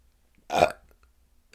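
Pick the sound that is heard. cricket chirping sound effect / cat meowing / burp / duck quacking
burp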